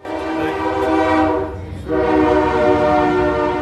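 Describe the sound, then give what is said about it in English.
A loud, sustained train horn blares in two long blasts with a brief dip between them, over a low rumble of a passing train, at the Marietta Square Farmers Market on a Saturday morning just before 9 a.m. “Some markets have music, we have the train.”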